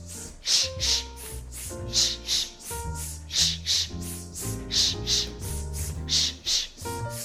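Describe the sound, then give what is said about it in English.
Forceful breaths pushed out from the belly as a breathing exercise, in a quick, steady rhythm, a dozen or so sharp hissing exhales like panting, over soft background music with no talking. “Then, like a doggy, we imagine that we run a lot, and we are breathing.”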